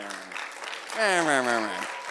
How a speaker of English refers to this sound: You guys waited way too long to clap for that. That was disingenuous.